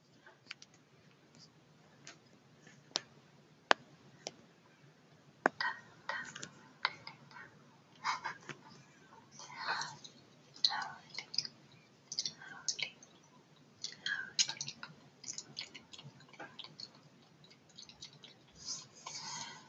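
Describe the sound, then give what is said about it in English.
Quiet ASMR tapping in sharp, irregular clicks, joined by soft wet chewing sounds and faint whispery noises, all at low volume with no clear speech. “So this one is the tapping and gum chewing.”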